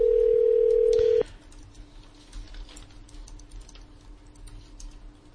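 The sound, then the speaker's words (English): A loud, steady telephone dial tone hums for about a second before cutting off abruptly, leaving quiet line hiss with faint scattered clicks and no voices, as a call is placed to a group out at the Hockomock Swamp. “And we'll try and connect in with the Hockomock Swamp group again.”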